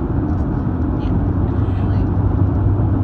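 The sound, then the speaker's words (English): A steady, loud low rumble of road and engine noise fills the cabin of a car driving past the San Onofre nuclear power plant by the ocean, continuous and unchanging for the whole few seconds. “Also, we are driving past the Ocean's Tits right now, people.”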